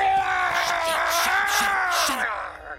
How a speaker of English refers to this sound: But he accidentally knocks over the iPad that has their Klingon Dungeons and Dragon game on it. And Martok screaming is not something that he knows how to mute quickly.